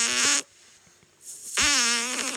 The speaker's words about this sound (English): All right, can we all muster one up on the count of three? Can we all fart directly into our microphones?